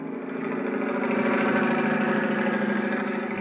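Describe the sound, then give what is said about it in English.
A helicopter engine throbs steadily and loudly, a continuous droning rumble with a faint pulsing rhythm that holds for the whole stretch, no voices over it, as the helicopter flies out to sea near Cape Town, South Africa. “I don't know which was throbbing the most, the helicopter engine or my head.”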